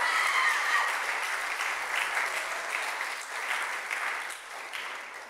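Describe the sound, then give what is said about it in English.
A crowd claps steadily, a dense wash of many hands at fairly even loudness for several seconds, with no voices over it, giving a round of applause to thank a couple and their team for serving. “So can we give them a round of applause and say a really big thank you for serving us?”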